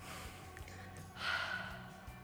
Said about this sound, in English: When I breathe in, my belly goes in.